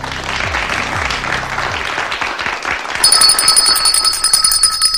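A red bell rings out with bright, sustained metallic tones, starting partway through and continuing to the end, layered over a steady wash of applause-like noise.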